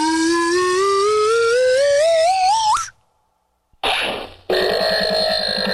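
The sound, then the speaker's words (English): A loud slide whistle, played by Dvorak, glides steadily upward with a wavering wobble for about three seconds, then cuts off; after a short silence, harsh buzzy bursts of noise follow. “Play the stupid slide whistle, Dvorak.”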